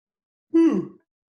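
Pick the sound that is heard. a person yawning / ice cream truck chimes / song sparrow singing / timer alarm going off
a person yawning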